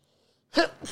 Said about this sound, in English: Uh-oh. Have a sneeze?